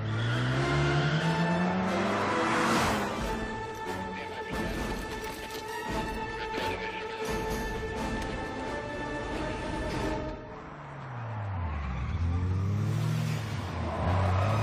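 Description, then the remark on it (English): A sports car engine revs loudly, its pitch climbing sharply, then settles into a steady throaty drone before revving up and down again near the end. No talking. “We put in some exotic cars and our Mazda RX-8, which is a kind of a cool car.”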